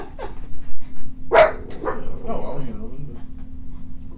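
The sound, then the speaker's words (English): A female dog lets out a sharp, loud bark, followed by a softer second yelp, over a steady low hum with some faint background voices. “I swear this dog never barked in her life.”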